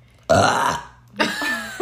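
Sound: burp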